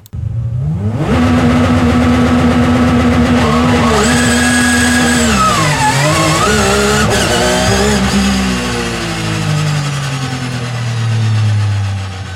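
A race car engine screams at high revs, pitch rising and wavering as it holds a sustained burnout, recorded onboard the car, loud, with tire noise under it and no talking.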